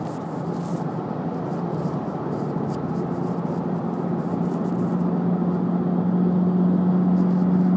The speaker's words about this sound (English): A lot of big trucks out today. All want to speed and act like they're dodging cars.